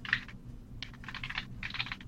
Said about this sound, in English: And I hear you typing.